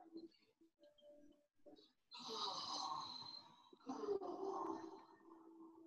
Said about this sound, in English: That's how I'm going to start breathing out from now on.